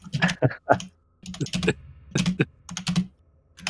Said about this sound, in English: Okay, I'm just adding one more note here. Are you typing that note on a typewriter? Can you hear that? Could you? Yeah, yeah, yeah. Jeez, it's really my loud. Microphone picks up everything.